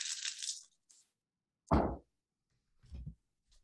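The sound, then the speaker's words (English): Dice, including a luck die, are shaken with a bright, hissy rattle, then clatter down in a sharp knock followed by a duller thud and a faint last tap. There is no talking. “Which one's going to be luck dice?”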